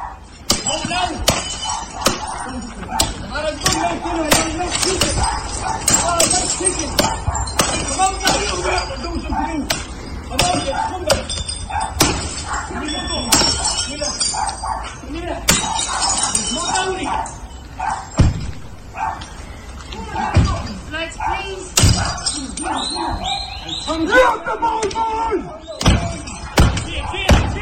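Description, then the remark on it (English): Repeated heavy blows batter the windows and door of a house in Kilmallock on a Sunday night, apparently with hurleys wielded by a number of people, with sharp cracks, thuds and breaking glass in an irregular barrage throughout, loud, while agitated voices sound in the background. “Well, that's the sound of a house in Kilmallock being battered on Sunday night, windows and the door smashed with what looks like hurleys in the hands of a number of people.”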